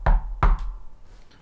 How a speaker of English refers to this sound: Sorry, I was knocking to get the second verse to kick in.